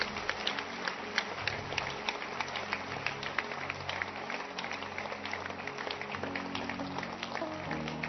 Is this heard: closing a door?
no